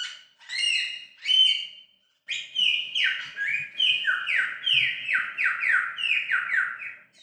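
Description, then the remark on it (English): A single male lyrebird sings loudly to attract a female, starting with a few bright whistled phrases, then after a short pause launching into a rapid run of repeated descending, cascading notes. “This is all just one bird, one male. And he does this to try and attract a lady.”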